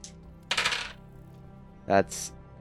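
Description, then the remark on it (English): A short, bright clatter of an action die and two challenge dice tumbling across a hard tabletop, rolled in a tabletop roleplaying game to undertake an expedition, followed by a brief murmur of a voice and a soft hiss. “That's a 4 on the action die, a 1 and a 1 on the challenge dice for a strong hit with a match, which means that this is an exceptionally strong hit.”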